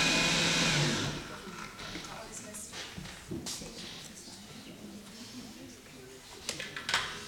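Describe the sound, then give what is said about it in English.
A blender roars at its highest speed for about a second, a loud whirring grind while blending ingredients for a homemade cheese, then cuts off, leaving quieter clatter and handling noises with occasional soft knocks. “Okay, and then the next thing is at this point, I would just take it off the sides of the blender because there's little pieces sticking up there that are not blended, and you don't want little lumps in your cheese.”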